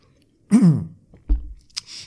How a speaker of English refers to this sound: And that that realization, and now I'm going to have some water.